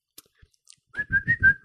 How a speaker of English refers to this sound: Can you whistle? Oh. Wow. It's a little, my whistle isn't wet enough.